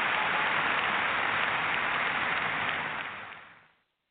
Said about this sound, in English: I love that. I love that an entire audience just burst into applause at the thought of science and reason.